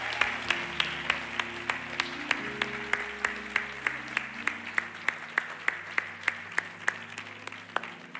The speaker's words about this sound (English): You may go back to your seats. Come on, give them a round of applause as they go back to their seats.